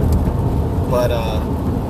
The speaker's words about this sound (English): So it's starting to rain now. Hey, look at that. It's starting to rain. Interesting.